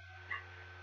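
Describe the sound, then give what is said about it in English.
A puppy gives a single brief, high whine, fairly faint, over a steady low hum; no other sounds follow in the short moment. “You hear a low whining growl followed by a little thud.”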